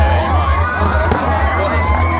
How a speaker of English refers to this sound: As we've got the constant group of kids that just seem to be screaming in front of the camera, I'm assuming that's what that is. I think. Just over there on the track, isn't it?